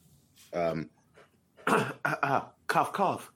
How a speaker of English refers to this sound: Cough, cough, cough, cough, cough. And then a real cough.